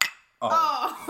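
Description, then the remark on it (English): A single bright clink of tea cups touching in a toast, its ring fading quickly into a brief silence before a voice comes in right after, fairly loud. “Do you want to cheers?”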